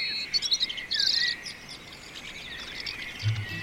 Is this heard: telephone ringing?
no